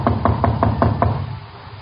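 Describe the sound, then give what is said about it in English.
Six quick, evenly spaced knocks on a door, firm and steady, with no voices, followed by a short quiet stretch. “Go see who it is. But don't let them inside.”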